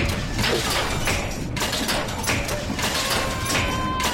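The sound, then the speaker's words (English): A clothes dryer door thuds shut and the machine starts, giving a steady rumble with a few scattered clunks and thumps over about four seconds. “I'm going to turn the dryer on.”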